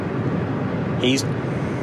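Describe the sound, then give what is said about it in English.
Steady road rumble of a car driving in traffic, with a brief high squeal or chirp cutting through about halfway before the droning noise carries on. “We have some traffic.”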